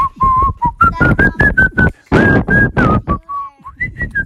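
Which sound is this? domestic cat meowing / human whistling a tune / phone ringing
human whistling a tune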